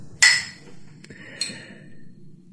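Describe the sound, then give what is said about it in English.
Two bright glass clinks from a toast, a sharp ringing strike followed about a second later by a softer second chime, both clear over a low background hum. “we raise a glass.”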